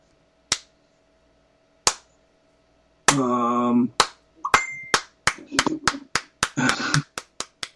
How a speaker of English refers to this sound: Sorry, I had to do the slow clap there.